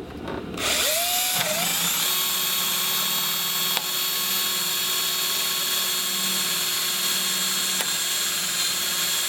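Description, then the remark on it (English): A power drill fitted with a large drill bit spins up and bores steadily into a computer case, a loud, continuous high-pitched grinding whine that holds for several seconds without talk. “So we got the biggest drill bit we could find.”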